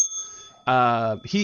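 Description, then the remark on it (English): A single bright ding from a hand bell, its clear tone ringing on and slowly fading while a voice starts talking over the lingering ring. “Where's my bell?”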